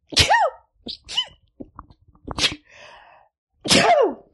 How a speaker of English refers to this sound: I have to sneeze. Hold on.